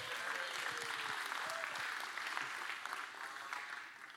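A sustained round of clapping from a crowd, dense and steady for about four seconds before easing slightly at the end, with faint voices mixed in beneath it.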